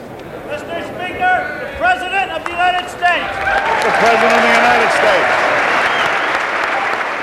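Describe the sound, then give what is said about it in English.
Loud, sustained applause and a standing ovation from senators and representatives swells up after a voice speaking over the first few seconds, greeting the president as he steps onto the House floor, then continues as a steady, dense roar of clapping to the end. “The president was all smiles as he stepped onto the House floor, greeted by a standing ovation and loud applause.”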